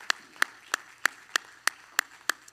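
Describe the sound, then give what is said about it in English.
Hands clap in a steady, even rhythm at a Grace Church service, eight sharp claps about a third of a second apart, moderately loud with no talking over them. “Let's clap our hands one more time to the Lord.”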